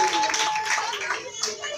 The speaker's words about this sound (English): Clap for him.